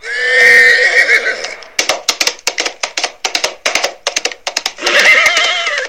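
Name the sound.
horse neighing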